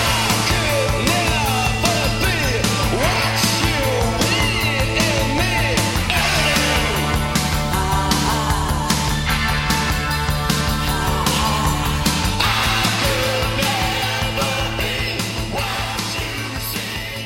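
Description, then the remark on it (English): A mainstream rock song played from a VHS tape plays continuously at a steady, loud level, with a driving beat, dense guitars and a sustained bass line that shifts pitch midway before returning. No one speaks. “apparently sort of moving a bit more mainstream rock rather than their sort of goth sound”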